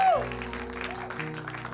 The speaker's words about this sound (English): Clap, clap for the Lord Jesus.